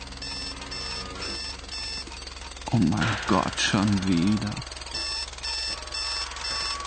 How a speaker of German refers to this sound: Aber zuerst bleibe ich liegen, wenn der Wecker dröhnt. Wenn der Wecker dröhnt.